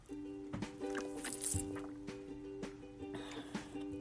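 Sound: drinking water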